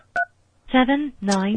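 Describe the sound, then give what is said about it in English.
A single short, clear telephone keypad beep sounds at the start as a number is dialed, followed after a brief pause by a voice saying the number dialed is not in service. “The number you dialed is not in service.”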